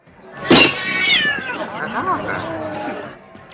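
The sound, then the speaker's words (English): A three-breasted cat creature dancing on the bar of the Paradise City saloon on Nimbus 3 lets out a sharp burst, then drawn-out, wavering meows and yowls that rise and fall in pitch, loud, with no talk over it. “A three-breasted cat creature is dancing on the bar.”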